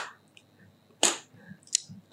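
Three sharp, loud hand claps ring out against near silence, spaced unevenly, the first after a quiet pause and the last two closer together. The claps are given as a beat for someone to sing along to.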